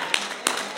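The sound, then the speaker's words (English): Three sharp hand claps land at a steady, brisk rhythm against a constant low murmur of room noise, as a church audience claps together in unison during a sermon. “Come on, give God a hand clap in there.”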